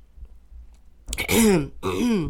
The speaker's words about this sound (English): I said, clearing my throat.